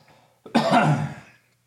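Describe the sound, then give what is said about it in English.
A single loud, harsh cough bursts out after a brief quiet moment, rough and raspy with a throaty rumble, lasting just under a second before fading away. No one speaks. “All right, I think my lung is going to stay down there.”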